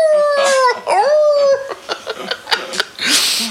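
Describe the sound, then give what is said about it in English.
A person mimics a dog's howl with a long, wavering, sliding vocal note, followed by a few short scattered noises and a burst of hiss. “Worst of all, my partner lets it sleep in our bedroom and it stands at the end of the bed howling whenever we attempt to be intimate.”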